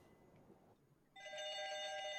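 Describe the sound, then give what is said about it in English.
After a brief, quiet pause, a phone starts ringing loudly, a bright, steady electronic trill that holds on to the end with no one speaking. “Wow, it doesn't even look like it's ringing.”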